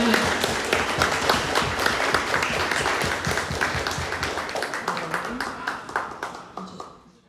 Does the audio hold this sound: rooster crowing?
no